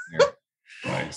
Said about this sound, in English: We have our dog here at the warehouse. Yeah. So she might yawn or, you know. Groan. She's very. Right on cue. I don't know if you can hear my dog. He's going nuts. That's the UPS guy, right? Yep.